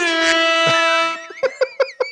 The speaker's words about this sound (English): there's going to be a whole lot more air horn than you normally expect in an episode of Retrovaniacs